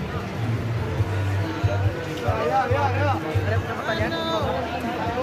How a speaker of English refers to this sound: And you can hear the guys yelling at the people walking by to get them to come to their restaurant.